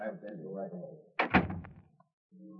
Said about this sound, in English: Then the door opens and you get a shock.